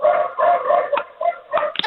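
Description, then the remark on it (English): A dog barks loudly, a run of drawn-out, almost howling barks that follow one another with barely a pause. No one speaks. “My dog is barking, actually.”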